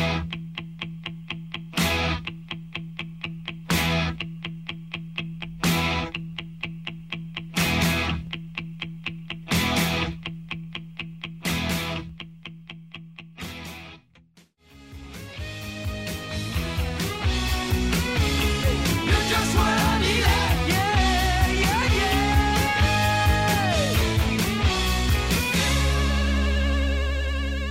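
A rock song played on Virgin Radio Pride opens with evenly spaced, punchy chord stabs over a steady low drone, then a full band with drums and distorted guitar crashes in around the halfway point and plays on loudly.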